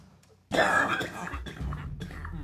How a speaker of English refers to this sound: Excuse me. I have this lingering cough you've probably noticed in the last few podcasts.